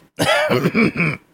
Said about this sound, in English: Are you going to be coughing like that any longer? As long as I have it.